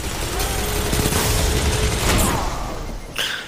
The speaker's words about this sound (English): Oh, he's using a machine gun. He's not using a hand cannon.